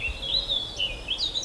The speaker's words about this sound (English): Really long drawn out. I don't know. Is that lesser spotted woodpecker?